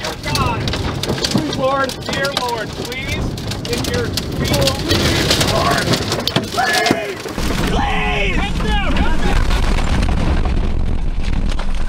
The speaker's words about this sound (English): That's the back window of the car being blown out, and the tornado actually coming into the car, the overpressure.